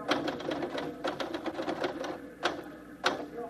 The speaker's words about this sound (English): You finished typing that banquet story yet?